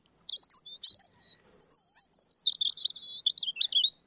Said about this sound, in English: It's a robin. Yes, it's a robin.